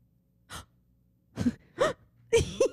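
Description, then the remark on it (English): A run of sharp, breathy gasps, about five quick intakes at irregular intervals, the later ones louder and partly voiced, with no talking. “The first time I ever saw the gasp. Did you gasp?”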